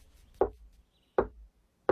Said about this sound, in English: That's us knocking.